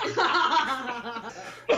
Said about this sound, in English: Oh, man, I'm making me cough. I'm laughing so freaking hard. I'm going to keel over and die myself.